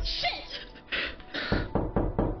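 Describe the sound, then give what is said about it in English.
A series of four loud knocks in a quick, steady rhythm, following a stretch of murky rumbling noise. “Oh, we have the knocking.”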